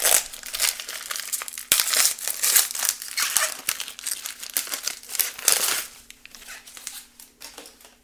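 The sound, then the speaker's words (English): A trading card pack's foil wrapper crinkles and rips open in a run of sharp, bright crackling bursts, loud and irregular, easing off toward the end. No one speaks. “Okay, one more pack to go.”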